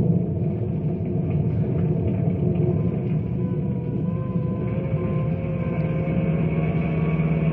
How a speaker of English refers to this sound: Phone calls come in by the dozens, and emergency vehicles are on their way to the stricken area. Bill and his rangers race across town.